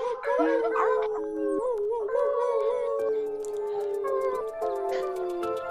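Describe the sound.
A group of people howl together like wolves, several long, wavering voices overlapping and sliding in pitch, with scattered whoops and a few sharp claps breaking in toward the end.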